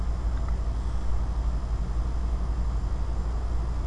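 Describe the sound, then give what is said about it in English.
A car engine drones steadily for the whole stretch, a loud, unbroken low rumble with a faint hiss on top and no voices. “It's a car!”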